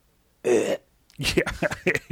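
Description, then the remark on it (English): A person fakes a single rough, throaty cough, imitating how kids cough, loud and a bit drawn out, followed by a pause and then a stretch of choppy vocal sounds like talking or further coughing noises. “kids don't wash their hands, and they cough like this.”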